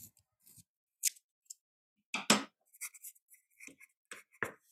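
Pencils being sharpened: a series of short, dry, scratchy grinding bursts, one longer crunchy twist in the middle, then quick irregular scrapes, with quiet gaps between and no talking.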